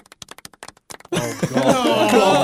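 A few scattered, thin handclaps given for a correct trivia answer patter unevenly for about a second, then give way abruptly to a loud, dense wash of tonal sound that fills the rest.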